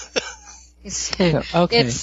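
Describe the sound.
A single short, sharp cough, followed by a brief pause and then a person talking.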